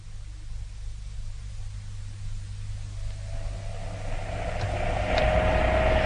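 A taxi drives along steadily at about 1 o'clock in the morning, its low engine rumble and broad road noise filling the space and gradually swelling louder toward the end, with no one speaking.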